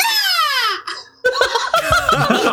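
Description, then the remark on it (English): A person voices a single drawn-out, downward-sliding mewing cry in imitation of a common buzzard, then after a brief pause breaks into bubbly laughter. “rendition of a common buzzard”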